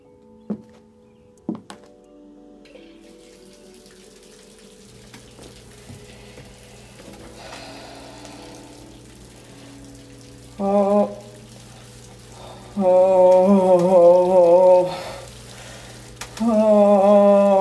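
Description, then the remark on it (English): Tap water starts running into a bathtub after a couple of soft thunks, a steady rushing hiss with a low hum, interrupted several times by loud, wavering tonal groans. “Okay, I'll start the water.”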